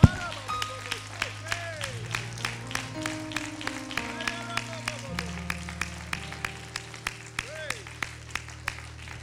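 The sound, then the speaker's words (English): An audience at a church worship service claps hands unto the Lord in a steady, even beat, sharp claps repeating about twice a second over sustained keyboard chords, with occasional raised voices in the mix. “Why don't we clap your hands again unto the Lord.”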